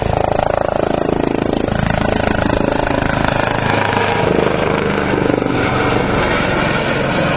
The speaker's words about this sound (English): So a Coast Guard helicopter is going to fly, like, directly overhead here. No, like, for real directly overhead.